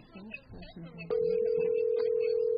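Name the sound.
telephone ringing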